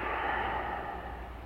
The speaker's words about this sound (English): Just allowing the breath to fall where it will, but breathing into the belly, breathing out, letting go.